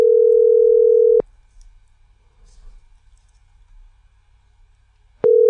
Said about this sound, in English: All right, please answer the phone. This would be amazing.